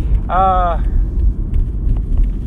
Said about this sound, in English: There goes Paul in a very fancy car.